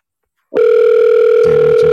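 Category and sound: signal or alarm, phone call ringing tone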